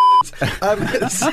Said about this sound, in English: We'll definitely beep that, that's right? Is it beep? No, it's bleep. Beep. I think it's beep or bleep. It is a beep, though, isn't it? A beep is like a little robot doing it, and a bleep is like... Right. A slightly different little robot.